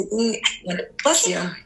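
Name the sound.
sneeze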